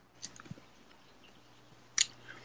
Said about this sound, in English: I've given up and I'm chewing up my Pop Rocks. I don't remember them. Enough noise. I don't remember them being gum back in the day.